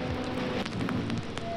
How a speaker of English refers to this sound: And you can, if you really like bear down on your headphones, you can hear the deep textured crackles of the record and just like that very soothing loop that just like just does not end and keeps throughout the entirety of this track.